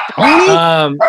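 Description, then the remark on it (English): One loud, drawn-out bark from a rescue dog, stretched into a rising, whiny tone that holds for most of a second before cutting off. “That's my new dog. His name's Tony. He likes to fucking bark his ass off.”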